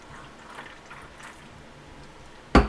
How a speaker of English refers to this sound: Anyway, I think we should all take a couple seconds of silence to just take a huge swig because that was massively off topic.